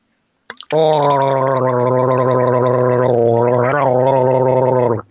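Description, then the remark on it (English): A person gargles a sip of seltzer loudly for about four seconds, a steady bubbling, voiced rattle in the throat with a slight shift in pitch partway through, then stops abruptly. “You gargle a little bit.”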